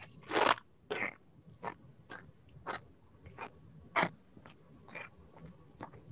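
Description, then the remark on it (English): A box of cornstarch used as a foley prop is squeezed in a run of about ten crisp, crunchy, squeaky bursts at an uneven pace, with no talking, mimicking footsteps crunching through snow. “It sounds like you're eating something crunchy. Okay, or I'm walking in snow.”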